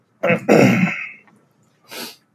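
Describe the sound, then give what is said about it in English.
A person coughs and clears their throat while recording: a short harsh burst, then a longer rasping one, a brief pause, and one more breathy cough. No one speaks. “Hey, you said no coughing. You said no coughing while recording.”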